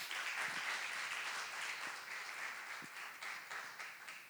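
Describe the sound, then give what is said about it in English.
A crowd gives God a round of applause, a dense wash of many hands clapping together at a fairly even level, with no one speaking over it, tapering slightly toward the end. “Why don't we give God a round of applause for that?”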